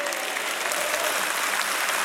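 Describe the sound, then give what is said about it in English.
An audience claps their hands together in a dense, steady burst of applause, answering the call for every single mother and every single father to clap their hands; many overlapping claps blend into a loud, continuous wash of sound with no voices standing out. “Clap your hands, every single mother, clap your hands.”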